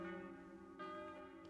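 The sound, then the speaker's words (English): Bells everywhere ring in the new year together in a steady wash of overlapping, sustained tones, with a fresh strike partway through, while rain hammers on the roof. The sound is soft, and no one speaks. “And I pulled myself out of it a little, and suddenly I knew what the bells were everywhere. Bells ringing in the new year.”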